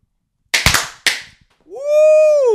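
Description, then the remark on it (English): Two sharp party poppers go off at a desk about half a second apart, each with a brief crackling tail, followed by a steady, rising-then-falling tonal whine. “Where's the little popper thingy? Pop. All right. A desk pop.”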